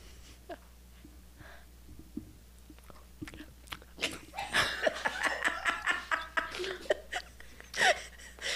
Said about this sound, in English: Okay, I'm going to move it away again because I don't like y'all hearing me crunch. You don't have to hear. You don't hear anything.